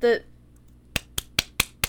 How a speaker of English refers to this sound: There's a lot of clapping happening.